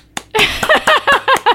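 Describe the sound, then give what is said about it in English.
A brief burst of hand clapping: about eight sharp, loud claps in quick, steady succession, with no voices over them. “I'm applauding that.”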